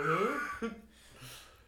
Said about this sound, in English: You think a yawn's coming on? Excuse you.